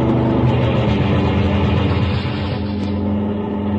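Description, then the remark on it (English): A loud, steady engine roar of a car rounding a bend and coming fast down a highway fills the whole stretch, its deep droning hum easing slightly toward the end. No voices are heard. “Suddenly, another car rounds the bend and comes down the highway fast.”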